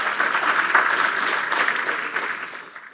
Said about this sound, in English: Let's give Pastor Isaac. Pastor Isaac a big round of applause.